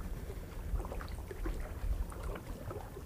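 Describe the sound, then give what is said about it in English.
Outdoor waterside ambience at the end of a jetty made of earth, stone and cement, with a few boats fishing out on the water: a steady low rumble of wind and water, faint scattered splashes and lapping, and boat engine noise; no one speaks. “I'm standing at the end of the dock. It's more of like a jetty, I guess.”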